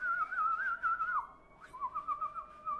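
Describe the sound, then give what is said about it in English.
A person whistles a wavering, warbling tune that imitates a morning birdsong, with a short pause midway before the trilling melody resumes. It is clear, with no talking. “Like a bird. In the morning time.”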